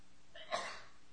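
A single quick sneeze, a short voiced intake snapping into a breathy burst, fairly faint, with no talking.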